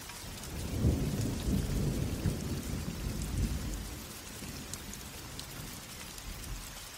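Steady rain hisses across the whole clip while a low, rolling rumble of thunder swells in the first few seconds and then fades, leaving soft continuous rainfall with no voices.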